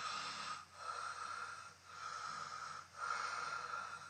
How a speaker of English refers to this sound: No, that's a lot better. Is this your snoring now? Yeah. That's so much better than it was.